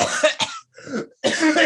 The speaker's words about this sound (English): Don't cough on my table. Jeez. It's my art desk.